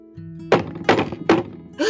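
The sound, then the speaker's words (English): Three loud, heavy knocks on a door, evenly spaced about half a second apart, each a booming thud over a low, steady background hum. “That was a big knock!”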